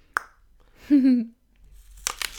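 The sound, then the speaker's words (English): A crisp bite into a Cortland apple: a sharp snap, a short falling hum from a voice, then a quick cluster of bright, crunchy chewing bursts at the end. “That was a good bite. This thing crisp like no other.”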